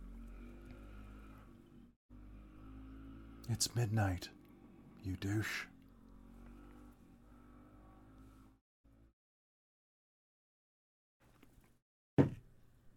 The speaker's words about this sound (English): Pardon the motorcycle.